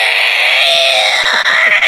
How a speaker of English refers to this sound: And the scream that they put on this, it's like something from fucking a Saw horror film. Yeah.